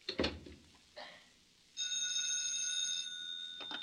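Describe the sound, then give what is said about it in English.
A telephone rings once in a bright, buzzing burst lasting over a second, heard after a couple of soft knocks, with no one speaking. “Oh, Mikhail, you shouldn't phone me.”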